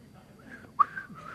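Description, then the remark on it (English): A person tries to whistle, producing a thin, breathy tone that wavers and sputters out, with a brief sharper chirp partway through and soft air noise around it. “I can't whistle right now.”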